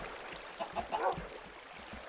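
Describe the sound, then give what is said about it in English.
A handful of short, nasal clucks from chickens in the video game Minecraft come in quick succession over a steady background hiss, then fade, leaving only the ambient noise. The calls sound fairly quiet. “Oh, and then the chickens.”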